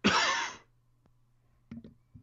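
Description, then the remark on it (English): A single loud, harsh cough, picked up because the mute button was not pressed, bursts out at the start and lasts about half a second. A few short, faint noises follow after a brief quiet stretch. “Did you catch that cough?”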